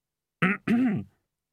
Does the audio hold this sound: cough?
yes